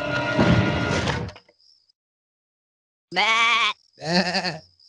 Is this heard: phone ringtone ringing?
no